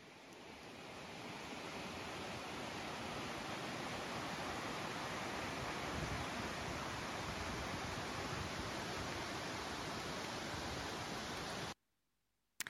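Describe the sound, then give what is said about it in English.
A steady, even rushing roar, either a waterfall heard while walking toward it on a forest path or wind high in the forest canopy, swells in over the first second, holds constant throughout with no voices, then cuts off abruptly. “We were heading towards a waterfall, but there was a point on the path where I wondered whether I was beginning to hear the waterfall or whether it was still simply the wind high up in the canopy above us.”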